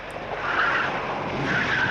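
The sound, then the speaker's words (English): Car tires squeal and skid through a tight turn around a corner, a sustained high screech over a steady engine roar, loud, with two swelling peaks of squeal. “So, tight turn around that corner there.”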